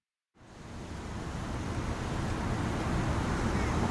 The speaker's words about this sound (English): Well, we recommend, because it's very windy, as you see the water like this, we recommend.